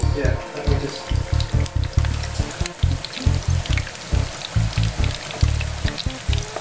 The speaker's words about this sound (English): Oh, so I'm deep frying potatoes. With rosemary.